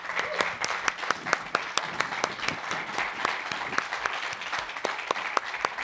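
Steady audience applause, a dense patter of many hands clapping with sharper individual claps popping out, holding at a fairly even loudness for about six seconds.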